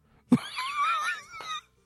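A cat clears its throat: a short low grunt, then a strained, wheezy, wavering whine lasting about a second before it cuts off. No one speaks.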